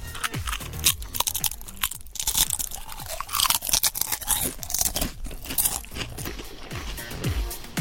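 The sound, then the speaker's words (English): Loud, crackling crunches of potato crisps being chewed, a rapid irregular series of sharp dry snaps and crumbles with no talking. “You give me the sniff after you've taken the crisps out.”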